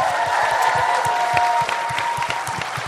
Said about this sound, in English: think we're going to end there. How about a round of applause for everybody?